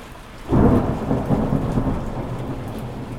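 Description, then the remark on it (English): A deep, low roll of distant thunder from a thunderstorm swells in about half a second and rumbles on steadily over a constant hiss of falling rain, with no voices. “One of my favorite things to do is falling asleep, safely tucked into my bed, listening to the low rumble of the thunder off in the distance.”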